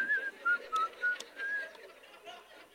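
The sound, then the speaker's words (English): Someone whistles a short, cheerful tune of about five quick notes, clear, followed by a faint murmur of background noise as the whistling trails off. “Whistle while we work.”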